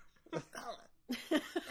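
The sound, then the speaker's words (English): A person imitates a crow coughing something up: two raspy bursts of croaking and gagging, a short hoarse one followed by a louder, choppier hacking sequence. “That's a really good impression of a crow coughing up someone.”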